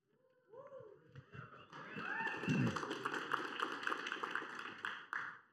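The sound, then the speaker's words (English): A church audience breaks into applause mixed with a few cheers and whoops, building within a second or two into steady, dense clapping that carries on at full strength before cutting off, as a speaker comes up to share. “I feel like I should get at least as much cheer as like a potluck.”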